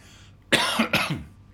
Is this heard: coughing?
yes